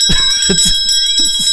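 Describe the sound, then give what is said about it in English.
A large church bell rings loudly, its bright overtones humming steadily throughout, with a few deeper pulses and rumbles rising and fading beneath the sustained ring. “Yeah, that's a giant church bell. Yeah, this one's no different.”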